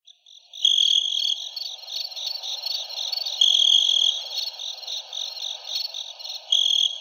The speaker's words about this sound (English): Where's your crickets?